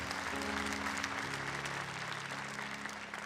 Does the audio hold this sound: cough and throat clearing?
no